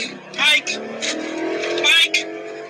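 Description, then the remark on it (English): A car engine drones steadily at a speed of about 100 on route 135 in traffic, its low hum rising slightly as it pushes harder, with voices talking loudly over it from inside the vehicle. “Dude, we're only at 100.”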